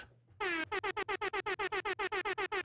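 A loud, blaring air horn sound effect, played from a bright yellow tap pad, sounds one long blast, then repeats in a rapid string of short, evenly spaced honks, harsh with no talking.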